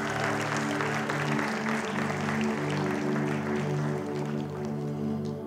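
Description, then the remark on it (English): An audience claps together on Father's Day in a dense, steady burst of applause lasting several seconds, fairly loud throughout, with sustained musical tones humming underneath. “Yeah, I think we should give a little bigger clap than that.”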